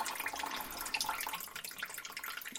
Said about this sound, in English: Lube it up with some water first. Got to lube it right up.